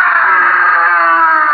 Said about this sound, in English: It's almost midnight, when suddenly there's a scream of pain and terror.